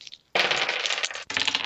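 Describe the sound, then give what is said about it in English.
Two dice are rolled for initiative, clattering and rattling across a hard tabletop in a busy burst of tumbling clicks, a short pause, then more rolling and skittering. No one speaks. “So you're going to roll 2 dice, same thing.”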